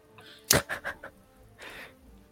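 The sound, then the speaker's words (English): A sharp swooshing transition effect bursts in loudly, followed by a few quick ringing pulses, then a softer airy whoosh swells and fades. No one speaks. “Let me transition to that scene. Okay. With our fancy new transitions. Right? So fancy. Whoosh. Swing.”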